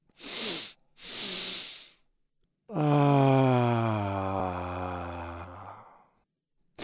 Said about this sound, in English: Again, double inhale, and then a longer exhale with a sigh. Try it for yourself right now.